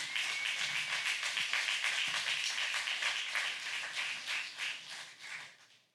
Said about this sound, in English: Boy, give him a hand clap of praise.